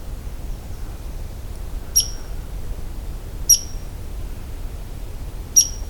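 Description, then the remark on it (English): An angry red squirrel gives three sharp, high-pitched squeaks, evenly spaced a second or two apart, each short and piercing, jumping a bit with each squeak to look mean, over a soft, low background rumble with no talking. “When the tiny red squirrels want to look mean, they make sudden movements every time they make that sound.”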